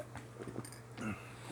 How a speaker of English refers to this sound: I'm going to take my first sip of HDT. Get ready for some slurping.